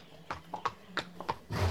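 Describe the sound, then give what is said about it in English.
A horse's hooves clop in an uneven, unhurried rhythm, about half a dozen crisp strikes, ending in a louder, rougher burst that sounds like the start of a neigh. “You have come for your horse? Is he ready?”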